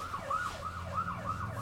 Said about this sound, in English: Can you close at the time? That window behind you? Oh, all I hear is the sirens.